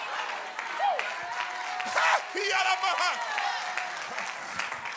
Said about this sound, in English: In the name of Jesus, come on, clap those hands one more time unto the Lord.